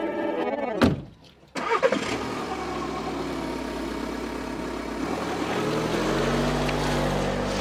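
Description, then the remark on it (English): A short burst and a brief pause give way to a car engine running steadily, a continuous drone whose low rumble swells toward the end. No one speaks. “Well, I'm always uncomfortable with car rides. I know that. It's real strange for me to be in the back seat.”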